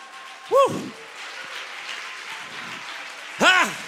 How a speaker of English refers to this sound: Stand to your feet and clap your hands like you've lost your mind. Stand to your feet and give the Lord some praise like you've lost your mind.